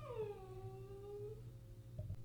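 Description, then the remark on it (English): A dog whimpers with one long, drawn-out crying whine that slides downward in pitch and trails off, followed by a couple of faint, short squeaks over a low background hum. “Had to put the crying dog in the bedroom.”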